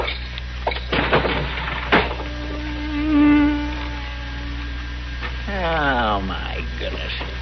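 A bee buzzes around a room in wavering, droning bursts that rise and fall in pitch as it moves about, with a couple of sharp knocks early on.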